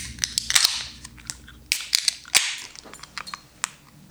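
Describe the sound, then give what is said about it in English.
A bottle of double IPA beer is opened: a run of sharp, irregular metallic clicks and snaps from the cap, mixed with brief bursts of bright fizzy hiss. No one speaks. “I'm just so excited for this sound here. So I always am. Let's open her up.”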